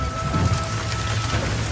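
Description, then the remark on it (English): Steady, loud rain pours down in a dense hiss while deep thunder rumbles underneath, a continuous thunderstorm with no voices present. “We're literally about 2 minutes and 20 seconds in front of this storm.”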